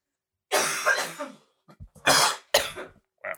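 Harsh, choking coughs after a drink went down the wrong pipe, in two loud bursts, the first a long raspy hack and the second a pair of sharp explosive coughs, separated by small gasping catches of breath, with no talking.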